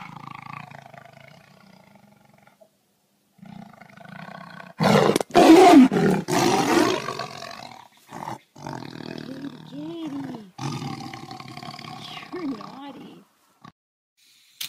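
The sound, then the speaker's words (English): A tiger roars loudly, a deep rumbling burst around the middle followed by a few growling, snarling calls that trail off, with a low murmur of voices early on. “I've got your tiger here, sir.”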